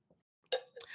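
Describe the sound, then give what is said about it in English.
A glass of water clinks once, then rings again a moment later as someone takes a sip, with faint small handling sounds before it and no voices. “Maybe I will take a sip of some water here.”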